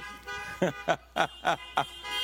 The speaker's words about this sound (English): We're going to get the neighbors. We're going to get the neighbors mad at us. We honking our horns too much. Amen. Making it sound like New York City traffic jam.